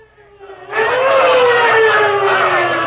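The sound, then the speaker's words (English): A wailing siren swells up from quieter tones and holds loud and steady, a long sustained tone sliding slowly downward, as a police squad car arrives. “Sure was lucky that police car was near Professor Harvey's home when you called.”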